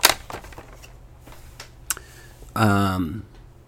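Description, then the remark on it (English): Scattered clicky keystrokes on an alligator mechanical computer keyboard, irregular, followed by a short, loud voiced sound with a falling pitch near the end. “Anyway, shout out to you, person who sold me the alligator keyboard.”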